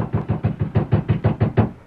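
Rapid, heavy pounding of fists on a wooden cabin door on the outskirts of the small mining town of Dry Forks, about nine hard thuds in a steady, urgent rhythm, loud, then fading off at the end.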